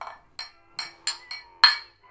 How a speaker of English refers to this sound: Are we going to make some bell noises to see it out?